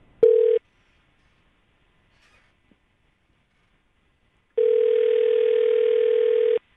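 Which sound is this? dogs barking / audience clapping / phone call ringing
phone call ringing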